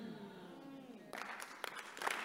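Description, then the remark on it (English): An audience bursts into clapping right after a voice with a sustained, tonal quality, the applause filling the room densely for about a second with a few sharper claps standing out. “Whether you clap or you don't clap, that's the truth. Everybody look at the screen. Stop clapping.”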